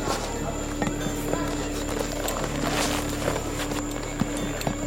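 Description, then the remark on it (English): The hooves of a horse with a rider seated on it clip-clop at an unhurried, slightly uneven pace, over a steady low hum and faint background noise. No one speaks. “And there I was, seated upon a horse, no less.”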